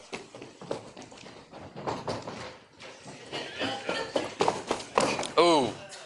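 Quick, rapid footsteps of several children running close by in a race to touch the back door and run back, pounding steadily and building in intensity, mixed with excited shouts and squeals over the patter.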